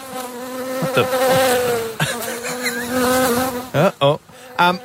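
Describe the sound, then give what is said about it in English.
A wasp buzzes loudly, a steady droning hum that wavers in pitch before breaking into a few short, sharp bursts near the end. No one speaks. “Yesterday we spoke about a wasp alert for Greater Shepparton, and there's a few around apparently, which people are getting a little concerned by.”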